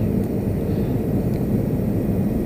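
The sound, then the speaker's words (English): A steady, loud low-frequency roar of jet engines heard from inside the cabin of a 787 airliner, only a quarter full, about an hour and a half from landing in Israel, a constant droning rumble with no voices. “It's a very unusual flight. The plane is only 25% full, 787 jet.”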